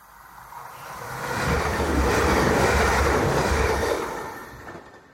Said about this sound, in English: The last train to Hull slams past the window.